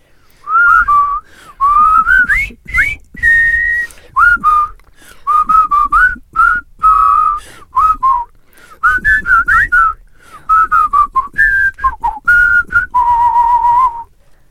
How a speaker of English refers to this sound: Oh, a pleasure. It's always nice to whistle on a podcast. You don't get enough, do you? It's really nice. It is really nice.